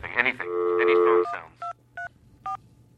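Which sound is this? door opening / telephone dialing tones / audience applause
telephone dialing tones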